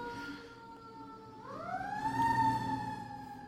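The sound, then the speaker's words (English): An emergency vehicle siren wails steadily outside a door, its pitch sweeping upward partway through and holding high, prominent with a low rumble of traffic underneath, no voices. “I've got a siren outside my door.”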